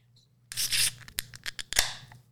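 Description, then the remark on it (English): A New Belgium Voodoo Ranger IPA beer can, held up to the mic and cracked open: a sudden hissing rush of fizz followed by several sharp metallic clicks and snaps, with a faint steady hum underneath and no talking. “Wait, hold it up to the mic and crack it.”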